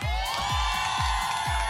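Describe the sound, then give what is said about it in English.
A small crowd at a radio broadcast, kept a set distance from the hosts, cheers and whoops loudly on cue in a sustained, unbroken burst, with a quick, steady pulse of low thumps running underneath. “Everybody cheer really loud.”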